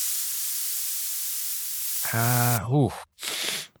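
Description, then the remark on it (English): A steady aerosol spray hisses for about two seconds as a teddy bear hung on the end of a metal pole is sprayed down, then a voice cries out over it, followed by a couple of short breathy bursts. “And here's a lighter. And let me spray the bear down.”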